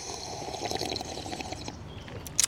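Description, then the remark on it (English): Several people in San Francisco sipping coffee from mugs together on cue after a count, a steady wet slurping texture that ends in a short, sharper slurp. No one speaks. “It's more fun when we all take a big sip together.”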